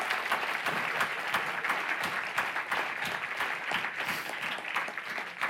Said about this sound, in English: I heard one person wanted to clap, one or two. Can we do that? Yes.